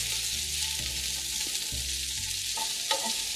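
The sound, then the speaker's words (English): Onions and garlic sizzle steadily in a hot pan over medium heat, a constant crackling hiss with faint scraping of a utensil stirring underneath, and no one speaking. “My onions are still sizzling, and I'm going to transfer them into the bottom of my baking sheets, and that ends the symphony.”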